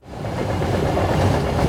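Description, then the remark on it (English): A train's iron wheels rumble steadily over rails, a dense low roar with faint rhythmic clatter, loud and continuous with no voices. “The floor rumbled beneath me, my heart pounding in rhythm with the iron wheels.”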